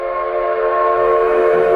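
A train whistle blows in one loud, steady, sustained tone for the whole brief moment, with a low rumble of the train underneath and no voices.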